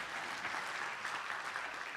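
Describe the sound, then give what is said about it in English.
A church audience applauds steadily, dense overlapping hand claps forming a continuous wash of sound from a large group, with no one speaking over it. “In some ways, you're applauding yourself that we've been patient”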